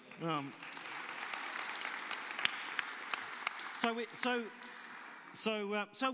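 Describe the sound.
An audience claps in a steady, dense patter for several seconds, with voices speaking briefly at the start and breaking in again over the clapping toward the end.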